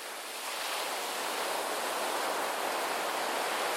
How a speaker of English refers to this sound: He spun in a circle, searching for the least hard patch on the very hard boulder on which he sat, and scowled down at the waves crashing into the shore below.